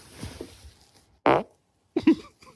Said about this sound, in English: Here's fart number seven.